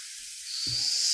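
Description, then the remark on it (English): A brief sizzling hot grill sound, a dense crackly hiss that swells brighter partway through as a low rumble joins in, heard alone for about a second. “Sizzling hot takes are brought to you by Dirt Burgers.”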